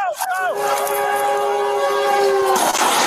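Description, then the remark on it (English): A train's horn blares loud in one long, steady chord lasting about two seconds, then cuts off into a noisy rush. “I'm sure he never intended to mess with the train, or he never intended for his plane to end up on a train track.”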